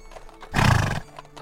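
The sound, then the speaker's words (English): A horse, hitched to a wagon on a sunny day with the ground lightly covered in snow, gives a single short, loud whinny that rises and fades within half a second, with faint scuffling that could be hooves before and after. No one speaks. “Say the day was sunny, the ground lightly covered in snow when he hitched the horses.”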